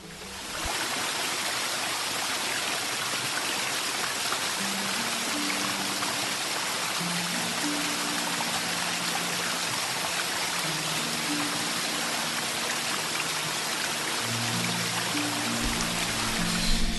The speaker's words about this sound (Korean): 이제 그 조금 더 한 5분 걸어 들어가서 이제 꽝시폭포가 뭐길래 그렇게 무슨 스크린세이버가 어쩌고저쩌고 연출을 하느냐 하고 올라가 봤습니다.